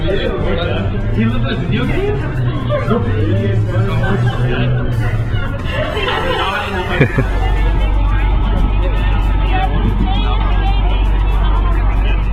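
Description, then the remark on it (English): Busy crowd chatter as a marching band's crew loads drum lines and sousaphones onto charter buses, mixed with a large bus's idling engine; a steady low rumble runs throughout and grows heavier partway through as the voices continue. “Right now, everyone loading buses. We got charter buses this time, it's going to be really cool.”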